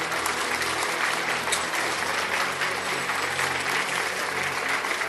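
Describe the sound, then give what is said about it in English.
A large crowd at a church service claps in a sustained ovation welcoming Apostle Prophet Teacher Dennis Nemi, a dense, steady wash of applause that stays loud and even from start to finish with no voices standing out. “Wherever you are, I want you to give him a clapping ovation and a thunging ovation.”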